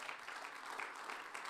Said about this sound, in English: Give yourselves a round of applause if you believe that.